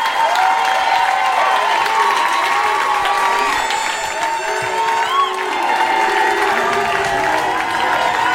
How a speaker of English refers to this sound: The crowd goes wild. The legendary D Madness. How loud can this place get for the great D Madness, everybody?